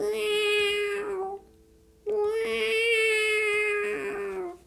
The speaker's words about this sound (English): A cat.